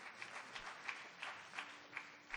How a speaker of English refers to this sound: Give him some applause.